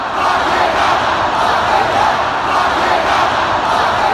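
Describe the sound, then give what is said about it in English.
A huge crowd of thousands at a Bernie Sanders rally in Minnesota chants "Lock him up" in unison, a loud, dense roar of many voices holding a steady rhythmic chant throughout, with no single voice standing out. “Thousands of people chanting, "Lock him up."”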